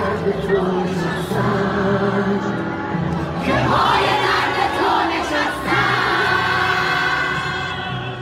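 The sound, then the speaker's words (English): Female fans packed in one corner of a mostly empty stadium scream and shout continuously while waving flags, a dense, steady roar of many high voices that swells slightly in the middle and holds loud for the full eight seconds. “In one corner, female fans packed the seats, screaming and waving flags.”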